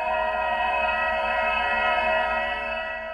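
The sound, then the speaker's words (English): A Nissan Leaf AVAS (Acoustic Vehicle Alerting System) warning sound, used when driving at low speeds: a steady, synthetic whirring tone built from layered pitched harmonics, held at an even, fairly loud level for about three seconds with no voices. “And here's the AVAS sound from a Nissan Leaf.”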